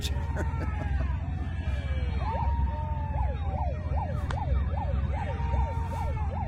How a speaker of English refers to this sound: Yeah, the cops come and show up like right away too. You can actually hear them. They show there.